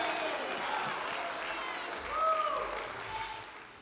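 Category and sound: crowd, audience clapping hands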